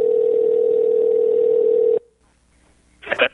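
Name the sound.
phone call ringing tone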